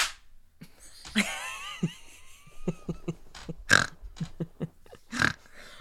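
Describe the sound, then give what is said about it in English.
Sharp hand claps land at an irregular pace, about ten in all, a few louder than the rest. Early on, a high, wavering squeal briefly runs under them. “Now Let's we clap.”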